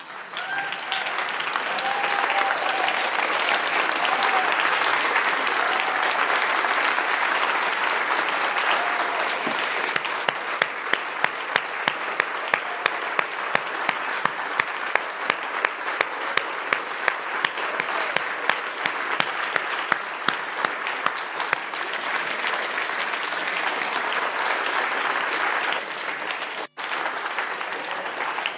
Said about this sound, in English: And I want to honour these guys because they've chosen to lay their lives down for you and for the kingdom of God. And I want to invite you now to stand and applaud them.